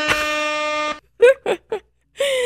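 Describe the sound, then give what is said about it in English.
A loud, blaring air horn honks for about a second, followed by a few short vocal bursts, then the horn blasts again at the end. “I get to do that, and I will just, like, horn honk you.”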